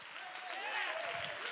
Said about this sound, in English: Come on, clap your hands with me with some boldness and some strength.